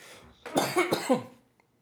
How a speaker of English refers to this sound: Jesus. Mr. Coughs a lot tonight, guys. You are. Sir Coughs. Mr. Sir Coughs a lot.